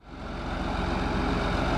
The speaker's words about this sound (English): In the small town of Oakville, Illinois, about 40 miles east of St. Louis, a farmer pulls a tractor cart full of wheat up to the grain pit. He dumps the wheat in the bin, where it will be stored at this co-op.